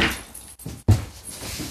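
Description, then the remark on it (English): A door is unlatched and opened, with a rattle like jangling keys, a brief pause, then a dull thump followed by a sustained rustling noise. “Oh shit, let me go to the door.”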